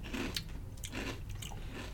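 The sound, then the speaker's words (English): Crunching of a crisp, seasoned chip being bitten and chewed, with several sharp, crackly bursts in quick succession over a low background hum; no one speaks. “The chip itself has a really good consistency. Nice crunch.”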